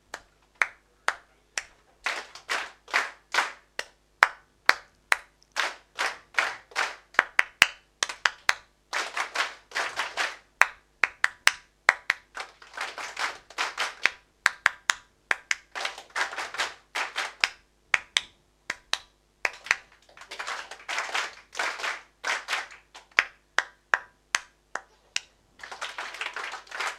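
An audience copies a clapped rhythm together for about half a minute, sharp bright claps in repeating bursts with some claps falling slightly out of step, and no talking.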